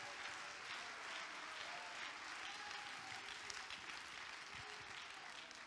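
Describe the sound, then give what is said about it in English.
A church audience claps their hands for Jesus during a gospel sermon, a dense, steady wash of applause that holds at an even loudness for several seconds, the individual claps blurring into a continuous crackle. “Somebody clap your hands unto him.”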